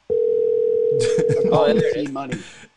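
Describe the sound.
One long, steady electronic ringing tone of an outgoing live phone call sounds for nearly two seconds, clear, while people start talking over its second half and keep talking after it stops.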